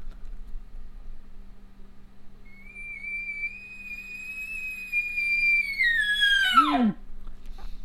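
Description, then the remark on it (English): An imitated elk bugle made to get a response from an elk, with no grunting or chuckling: one long, high, whistling note held for several seconds, growing louder before sliding sharply downward at the end, over a low steady hum. “I would bugle, and I'm looking to get a response from an elk”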